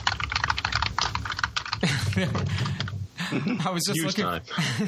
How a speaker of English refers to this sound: if we misplace the typewriter sound, he can clunk on his keyboards. And, oh yeah, lovely.